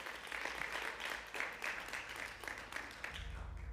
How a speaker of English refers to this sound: Let's give our worship team a round of applause this morning, shall we?